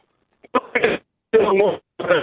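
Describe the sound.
A caller's phone line breaking up: muffled, narrow telephone-quality voice sounds cutting in and out in three or four choppy bursts separated by dead silent gaps.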